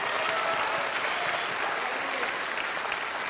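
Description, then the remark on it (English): Steady applause from an audience clapping their hands together to give praise to God, many hands clapping together in a dense, continuous wash of sound with no pauses, fairly loud throughout the short stretch. “If you believe it, clap those hands together and give him praise.”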